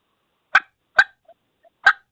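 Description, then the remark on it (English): Three short, sharp turkey clucks, a basic cluck blown on a diaphragm mouth call, evenly spaced and fairly loud, with a couple of faint soft ticks between them and no talking. “Just blow something. Do it. A basic cluck is just...”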